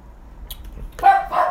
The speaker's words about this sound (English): And there goes the dog again. Dog's angry.